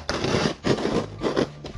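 Scissors slicing open a cardboard box, heard as three or four rough, rasping strokes in quick succession, fairly loud and with no voices.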